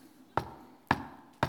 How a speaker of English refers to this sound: Behold, I stand at the door and I knock.